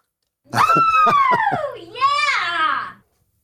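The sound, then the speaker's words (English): A loud, high-pitched scream sound effect in a mailbag jingle, lasting a couple of seconds. It starts with a few sharp clicks, slides downward in pitch, then rises into a shrill second burst before cutting off. “All I ask is that we get that scream in before I do the mailbag.”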